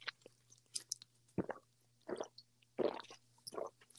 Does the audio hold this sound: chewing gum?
yes